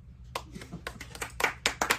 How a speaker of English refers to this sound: So first off was Furlock, who, by round of applause, who thinks he should be the champion?